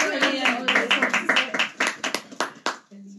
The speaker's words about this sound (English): You can actually give a round of applause. Yay! Come on, guys.